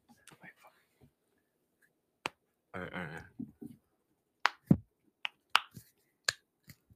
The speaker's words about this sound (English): All right. Get my neck. My neck crackles.